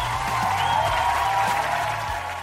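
A large crowd applauds in a dense, steady roar of clapping that holds at a constant, fairly loud level throughout, with a low tonal hum running underneath.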